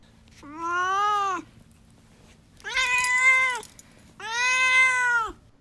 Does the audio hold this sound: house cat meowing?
yes